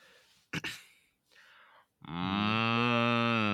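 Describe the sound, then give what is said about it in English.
A person imitates a cow, giving a loud, sustained low moo after a couple of short breathy sounds, the voiced call held steadily for over a second and a half. “That was actually a good cow sound.”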